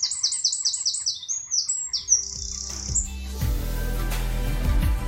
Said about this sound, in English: The spring is coming. I thought I would, and the birds are singing. I thought I'd record them a bit for you just at the end of this podcast.